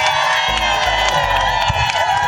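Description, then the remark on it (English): An outdoor crowd on a Friday, July 7th, cheers and whoops steadily, a loud, dense wash of many voices with higher shouts poking through, sustained for a couple of seconds without pause. “It's a happy Friday crowd.”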